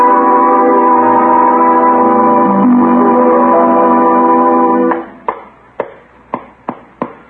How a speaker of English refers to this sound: I can see Leroy over there now ringing the dinner bell.